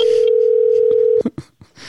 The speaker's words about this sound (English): It is the phone ringing.